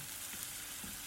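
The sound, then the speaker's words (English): Steady sizzling of food frying in a pan, a dense crackling hiss that holds evenly throughout with faint soft bumps, no voices present. “Oh, sizzling.”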